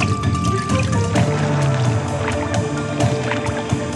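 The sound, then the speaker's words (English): Rapid, light splashing of a basilisk lizard, also called the Jesus lizard, racing across a water surface, its wide webbed feet slapping the water in a busy pattering of small slaps, with a steady tonal background underneath throughout. “Witnessed at normal speeds, their fleet-footed water dance leaves nothing but questions in its wake.”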